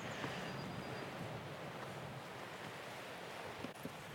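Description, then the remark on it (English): Wind roaring through a stand of big fir trees in the Brecon Beacons, Wales, a steady, dense rushing roar that holds constant throughout, with faint swells like surf and no voices. “You can hear the wind in a load of firs nearby. Big conifers roaring.”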